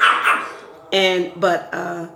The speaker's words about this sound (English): My dogs are just going to have to bark. Oh, they're having a good time. Yeah, they don't like when I talk about bills.